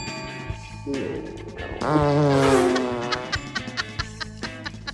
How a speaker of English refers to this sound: Got some new farts in.